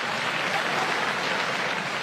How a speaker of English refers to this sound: Was there even any difference in the applause?